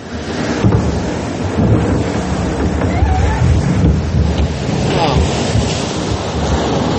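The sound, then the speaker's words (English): A loud, steady roar of rushing, splashing water fills the whole stretch, turbulent as a boat plunges down the first drop of a water ride with high water, with faint voices buried underneath. “Look how high the water is.”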